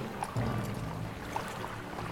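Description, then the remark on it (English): A steady, soft rush of the flowing Delambeer River at sunset, with faint gurgles, continuous, with no voices present. “And as the sun begins to set, you begin to hear the flowing waters of the Delambeer River.”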